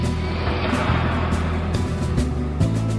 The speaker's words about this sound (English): Found my truck keys, engine on.